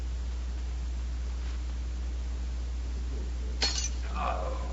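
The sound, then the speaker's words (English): A wine glass is dropped, hitting the floor and shattering in one sharp crash near the end, followed by a brief scatter of tinkling shards, over a steady low background hum. “That's the second wine glass Valcourt has dropped in an hour.”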